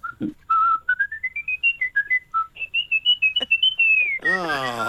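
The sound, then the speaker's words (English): A person whistles a bright, bouncy tune meant to convey happiness, with quick rising notes and short trills, clear, ending with a brief burst of breathy noise. “Could you convey happiness through the medium of whistle?”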